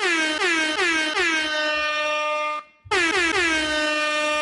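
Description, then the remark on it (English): A loud, blaring air horn fires off in a quick string of short blasts, then a long sustained honk, a brief cut, and another long blast, with no one talking. “I think we need to hear the air horn again.”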